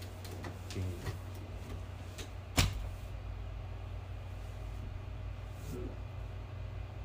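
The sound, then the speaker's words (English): A closet door shuts with one sharp thump partway through, followed by a few faint knocks, all over a steady low hum. “Because then you don't have to open the door.”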